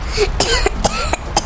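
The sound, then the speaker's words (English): A rapid string of about five harsh coughs from smoke, loud and closely spaced, with a raspy, throaty edge between bursts and no talking. “causing Dudu and Buffalo to cough even more as they giggled”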